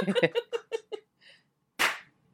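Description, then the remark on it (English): A quick run of short, choppy vocal bursts gives way to a single loud, sharp crack as a group of people clap their hands together at once on a countdown, slightly out of sync, then quiet. “Many claps. Yeah. I clapped a little bit after I said clap, which maybe was not ideal.”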